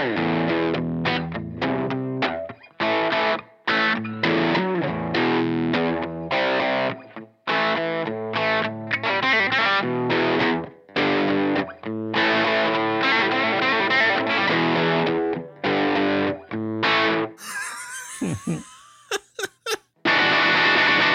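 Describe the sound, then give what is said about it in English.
Heavily distorted electric guitar plays a fast, continuous run of quick legato notes, hammer-ons and pull-offs in rapid bursts, ending with a few sharp noisy chops and a brief sustained tone. “Doing a little wheedly there. Some hammer-ons and maybe some pull-offs.”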